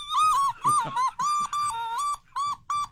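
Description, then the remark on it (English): Someone tries to imitate a duck call with a run of about seven sharp, high, whistling squeaks in quick, uneven bursts, loud, with no speech. “I don't know how to make a duck call, but we're gonna learn through the course of the show, right?”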